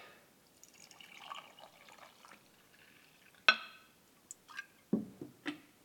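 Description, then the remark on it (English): Brewed coffee is poured into a mug in a soft, steady trickle for a few seconds, followed by a handful of sharp clinks and light knocks as the pouring stops. “So let's pour some brewed coffee.”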